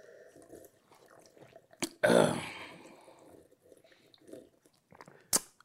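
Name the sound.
sipping water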